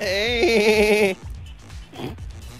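A single loud, quavering sheep bleat rings out for about a second, then cuts off, leaving quieter background sounds and faint voices.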